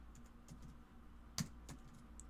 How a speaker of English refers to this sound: Everybody, hold on a second while I'm typing.